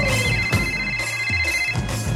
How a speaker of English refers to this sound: Let's call her. It's ringing.